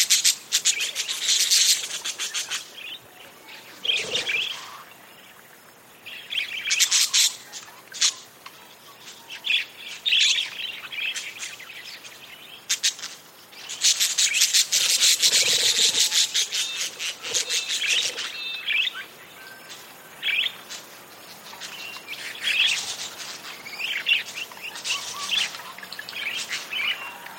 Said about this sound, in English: These wild parakeets wake at dawn, chatter amiably, and then flutter off in groups to feast on seeds.